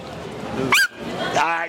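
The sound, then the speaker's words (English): A dog lets out two short, high-pitched yelping whines, the second drawn out a little longer, with muffled voices murmuring underneath. “I'm not sure what he did to that dog.”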